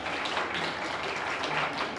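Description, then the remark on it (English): A crowd claps steadily for a man riding a bike around a track, a dense patter of many hands at an even moderate level that holds throughout the couple of seconds without letting up. “Can we give him a little bit of a round of applause as he rides his bike around?”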